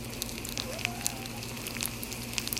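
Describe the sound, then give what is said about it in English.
Crab cakes sizzle steadily in a frying pan, a dense hiss peppered with sharp little pops and crackles, with no voices. “We are frying up the crab cakes, ASMR.”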